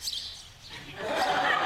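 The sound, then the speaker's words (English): A grassland sparrow chirps and twitters in quick, high-pitched bursts, fairly clear, building in the second half over a faint airy hiss. “A grassland sparrow? I thought those were going extinct.”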